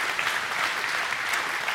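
A church audience claps their hands together to thank the Lord, a dense, steady wash of many overlapping claps with no distinct individual beats, sustained at an even loudness throughout.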